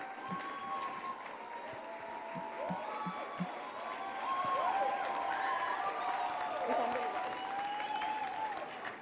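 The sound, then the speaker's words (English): A large audience claps steadily for several seconds as a pastor comes forward, the applause dense and sustained and swelling slightly midway, with scattered voices and cheers rising above it. “Keep clapping.”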